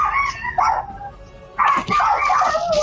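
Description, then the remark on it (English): A pack of small dogs yapping and barking, used as the sound effect for a thunderstone: a few short yips at first, then a dense overlapping chorus of loud, high-pitched barks that fills the rest of the moment. “That thunderstone sounds like a bunch of dogs.”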